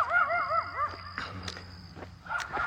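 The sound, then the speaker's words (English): A big guard dog barks and whines in its yard in short, pitched bursts, with a couple of sharper yelps later on, over a low steady outdoor hum. “He's a big guard dog.”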